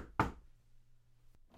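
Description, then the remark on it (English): A knock on a door as a guest arrives at a Christmas sweater party: one loud thump, followed by a faint tap about a second later, with quiet in between. “Let me get the door.”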